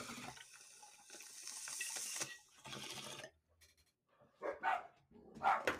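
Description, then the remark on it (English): A bong rip: steady, noisy water bubbling and gurgling for about three seconds, then a brief quiet, followed by two short, harsh bursts like coughs or sharp exhales. “Okay, we'll take our bong rip and then we'll start.”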